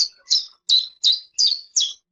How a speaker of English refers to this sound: The first second of that clip is real, and the rest is AI-generated. So somewhere in the third cheep, AI takes over and starts to speak chiff-chaff.